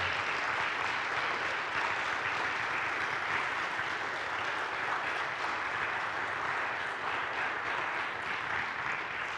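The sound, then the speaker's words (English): A church audience claps steadily for several seconds to honor a staff member called up to the stage, a dense, loud wash of many hands with no pauses or voices on top, holding an even level throughout. “Would you give her a round of applause, please?”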